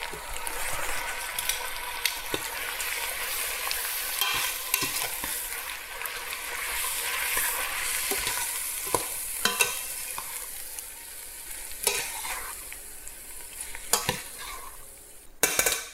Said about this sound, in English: Maybe a bit more oil actually. And I'm gonna add my pasta in. So if it's looking a bit dry at this point, you can add a touch of pasta water.